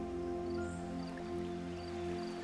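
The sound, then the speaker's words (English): Soft, continuous water sounds with gentle swells, like water lapping in and drawing back, layered over a steady low droning hum. No one speaks. “Can you find a way to breathe with the ebb and flow of the water?”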